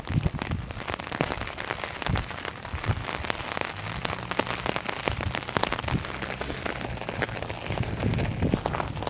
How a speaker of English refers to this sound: Anyway. Yeah. Can you hear the rain?